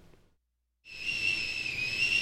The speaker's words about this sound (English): It would be this sound of the kettle boiling, because I'm an Englishman and tea makes me live.